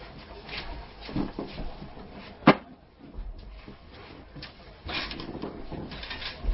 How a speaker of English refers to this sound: Why don't we, should we probably start closing these doors? Is it getting cold in here for you guys?